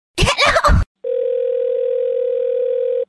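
A short, clattering burst cuts off, then a steady telephone dial tone drones on alone for about two seconds, loud and unbroken, like the line after a call drops.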